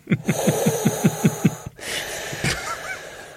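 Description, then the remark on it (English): Heavy, rasping breaths come in a quick run of about eight rhythmic gasps with a low, honk-like tone, followed by a pause and one more loud breathy burst. “your breathing apparatus doesn't seem to be working because you're unable to come out with more than three words before you have to have a deep breath.”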